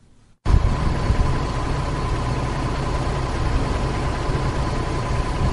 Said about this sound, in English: The sound of a Chinese-made bus in Zimbabwe signifies the beginning of greater things to come due to the China-Zimbabwe relationship